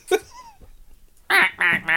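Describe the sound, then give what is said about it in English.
A short faint chirp, a quiet lull, then three loud, nasal duck quacks in quick succession, harsh, with no talking. “This will be an evil duck.”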